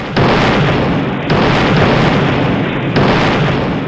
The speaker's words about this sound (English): It's quite a lot of explosions.